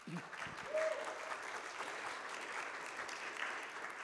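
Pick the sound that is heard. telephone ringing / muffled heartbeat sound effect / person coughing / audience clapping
audience clapping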